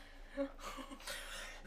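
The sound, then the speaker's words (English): A short run of quiet, rough coughs, two or three breathy bursts in quick succession with no talking. “Sorry, having a little coughing fit.”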